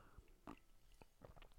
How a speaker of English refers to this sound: Well, actually, first thing I'm going to do is take a sip.